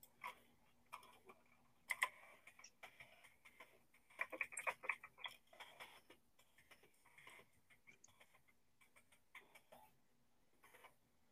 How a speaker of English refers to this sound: Are you typing on your computer or is that her? I just messaged her on computer.